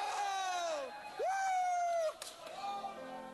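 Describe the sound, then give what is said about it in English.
A baseball stadium crowd cheers a foul ball by pitcher Bartolo in a steady roar, with two long, high whooping shouts that swoop up and hold before fading, followed by a softer third cry. “You usually don't get a lot of cheers for a foul ball, but Bartolo does.”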